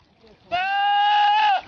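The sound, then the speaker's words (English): A goat lets out one long, loud, strained yell that sounds eerily like a human shouting, held steady for about a second before cutting off, with no talking. “Animal screaming noises, like goats that yell like humans.”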